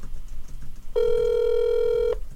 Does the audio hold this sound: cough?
no